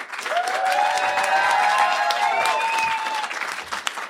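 A crowd claps steadily for about four seconds while high, drawn-out whoops and cheers ring over the applause, staying loud throughout before easing slightly at the end.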